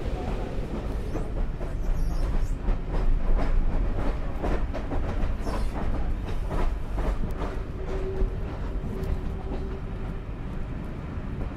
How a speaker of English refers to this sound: We've gone across a couple of level crossings. I wonder what the people thought as they saw two wonderful steam engines powering a train across.